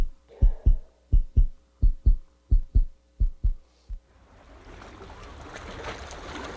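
A quick, pounding nervous heartbeat of about six heavy lub-dub pairs thuds, then stops and gives way to a broad rushing wash like surf on a shore.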